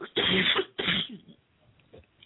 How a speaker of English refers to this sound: Yeah, I have, just a second, I have a little cough.